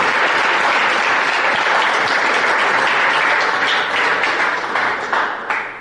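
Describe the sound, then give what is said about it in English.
A studio audience at the Sports Business Radio Roadshow in New York City, December 2016, applauds David Stern steadily, a loud, dense wash of many hands clapping that holds throughout and starts to thin out near the end, with no one speaking. “Let's give David Stern a big round of applause.”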